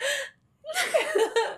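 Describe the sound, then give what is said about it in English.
A voice imitates a slow, drawn-out gasp: a short breathy intake, a brief pause, then a longer, wavering voiced gasp, fairly loud, with a laugh-like edge. “okay, like a yeah. slow gasp.”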